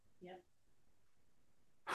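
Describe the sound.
A person imitates an exhausted gasp for breath to illustrate a word translated as weary: a short voiced, breathy exhale, a quiet pause, then a sharp, loud rush of breath at the very end, alone.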